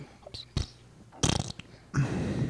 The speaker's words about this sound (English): Fart. Okay, get all your farts out of your system right now.